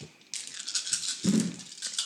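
Dice are rolled for an attack in a game. They rattle and clatter continuously for under two seconds, a dense, bright, rapid clicking with a heavier thump partway through, with no voices.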